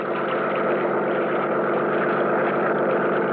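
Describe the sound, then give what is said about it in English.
The engine of a Higgins runabout motorboat heading south on Lake Mead runs at a steady pace, giving a continuous, even roar with no change in pitch or loudness and no voices. “I met him at the dock, and within a few minutes, we were on board as Higgins run about and heading south.”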